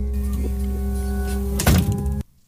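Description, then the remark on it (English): A steady low mechanical hum runs throughout, then a single heavy thunk of a ceiling hatch slamming shut like a door, before the sound cuts abruptly to near silence. “This nigga just closed the ceiling like it was a door.”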